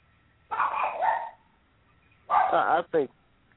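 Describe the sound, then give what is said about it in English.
A dog barks and yips in three loud bursts while being played with: a longer drawn-out bark, a pause, then a quick pair of sharper yelps, with quiet between them. “playing with his dog again.”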